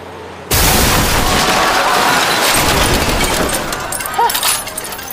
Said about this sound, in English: Wish granted. Oh yeah, our car gets smashed.